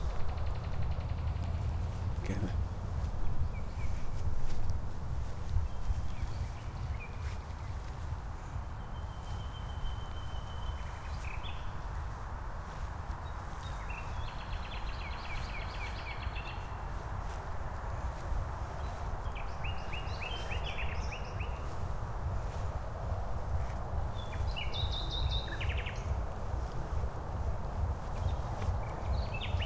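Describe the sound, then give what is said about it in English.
Nightingales sing in Berlin in bursts of bright, varied phrases from several directions, over a steady bed of outdoor background noise. “Berlin is the techno capital and the nightingale capital.”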